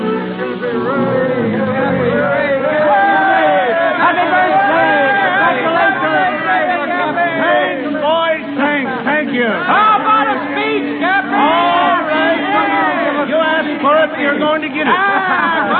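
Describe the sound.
A huge crowd of sailors and ship owners on the steps of the Blue Star Line shipping office, facing the busy wharves, chattering and calling out all at once as they congratulate its president, Cappy Ricks, on his 60th birthday; a dense, lively hubbub of overlapping voices and cheers that stays loud throughout.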